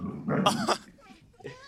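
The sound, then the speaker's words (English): A person lets out a short, rough, low growl, imitating an animal growling at a dog, followed by quieter breathy vocal rumbles that trail off. “kind of does a little growl at the dog.”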